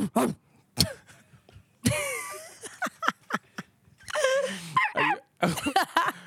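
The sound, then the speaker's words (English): A person imitates a dog with a series of short, rough barks and yelps, some breaking into higher whiny tones, delivered in uneven bursts. “I don't think I can do like the best barking X impression”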